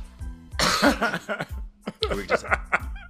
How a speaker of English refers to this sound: I can just cough into the microphone like I normally do.